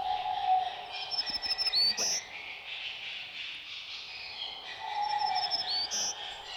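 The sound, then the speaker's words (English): A black-throated green warbler sings two clear, rapid phrases of thin high notes ending in a rising upslur, repeated after a pause, over soft ambient hiss with no voices. “More rapid and less buzzy than the black-throated blue are songs of black-throated green warblers.”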